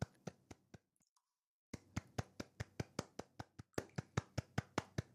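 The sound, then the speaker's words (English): Steady, sharp hand claps, a few quick ones, a brief pause, then a long run of evenly spaced claps at a brisk rhythm with no one talking. “it feels good to clap sometimes.”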